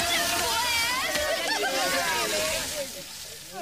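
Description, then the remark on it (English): Water sloshes and splashes continuously for a few seconds, fairly loud, with indistinct voices murmuring underneath before the churning eases slightly near the end. “Time for your shower!”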